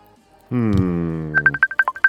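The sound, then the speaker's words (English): A phone rings with an incoming call: a sustained buzzing tone gives way to a quick run of bright, evenly spaced electronic beeps, fairly loud, with no one talking. “Oh, is that's your woman ringing me, right?”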